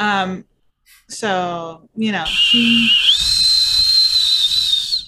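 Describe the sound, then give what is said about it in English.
A few short vocal sounds give way to a long, high, shrill whistle over a steady hiss; the whistle steps up slightly in pitch partway through and holds loudly until the end, echoing through the maze of a Hall of Illusions in a role-playing game. “So do you go in the direction of the whistle?”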